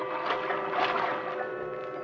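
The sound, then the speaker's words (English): Water splashing and sloshing continuously as a person who has slipped over the side of a boat swims steadily for distance rather than speed, with gentle, rhythmic strokes and no voices. “Then I took off some clothes and eased myself over the side. I didn't swim for speed, but for distance.”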